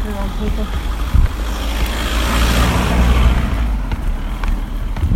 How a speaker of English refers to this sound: Oh, look, here comes the first car. That's the first car I've ever seen on our walks.